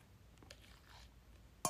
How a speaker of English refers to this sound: That's indicating I'm drinking water, guys.